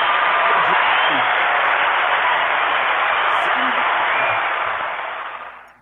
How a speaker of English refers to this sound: So we're going to get that round of applause. Get that round of applause.